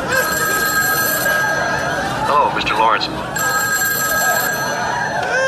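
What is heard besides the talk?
telephone ringing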